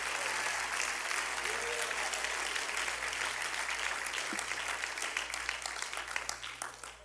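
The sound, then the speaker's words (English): A crowd applauds steadily in response to a speaker's call to clap their hands, dense overlapping claps filling the whole stretch, with individual sharper claps standing out toward the end as the clapping thins slightly. “Clap your hands if you know I'm telling you the truth.”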